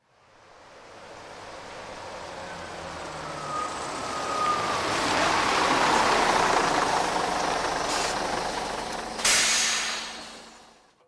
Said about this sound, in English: The bus came to a noisy halt. A bank of lights in the center of the carriage turned on, followed by a loud hissing sound before the doors opened.